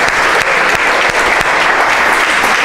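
A loud, sustained round of applause from a group, dense steady clapping with a few sharper claps standing out, filling the whole stretch with no talking.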